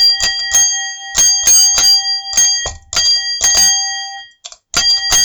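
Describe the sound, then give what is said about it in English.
A single bell dings over and over on one unchanging pitch, tapping out the rhythm of Jingle Bells in quick bursts, played on only one bell. It is loud, with no voices. “Can't make any other noises or tones to do jingle bells.”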